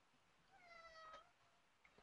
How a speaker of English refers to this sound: The cat says no.